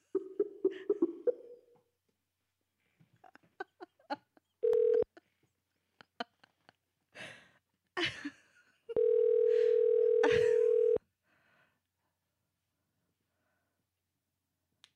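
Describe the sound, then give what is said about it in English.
A phone call being placed to call a man back: scattered clicks and taps, then a ringback tone, first a brief steady beep and later a longer two-second ring, clear. “Let's call him back.”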